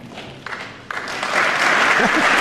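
An audience breaks into applause, starting with a few scattered claps that quickly swell into a loud, steady wash of clapping. A faint voice can be heard briefly under it.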